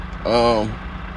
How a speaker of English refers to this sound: And I'm going to go ahead and apologize to y'all because, of course, a fucking bus pulls up right beside me. Loud motherfucker.